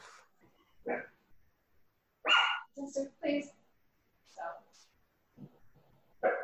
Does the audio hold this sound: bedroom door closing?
no